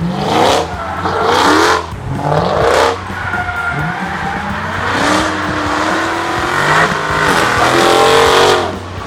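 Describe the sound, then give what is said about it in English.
A car engine revs hard again and again at a Chrysler and Mopar car show in Carlisle, Pennsylvania, USA, its pitch sweeping up and down in loud bursts, with tire squeals and skidding mixed in, and no one talking. “give you some sound clips of some things that we experienced. So let's get revved up.”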